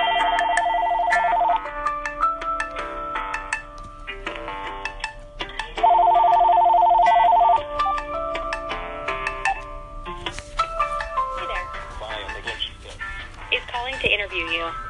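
A phone ringing tone sounds twice while a call connects: two loud electronic bursts about four seconds apart, with softer melodic electronic tones in between, heard over the line.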